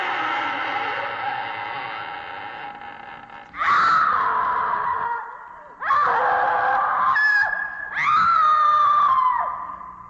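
Jokey horror-movie sound effects at the end of an album's last track: a loud, wavering cry of a moaning creature followed by three piercing screams of a damsel in quick succession, each sharp-edged and sustained, with no talking underneath.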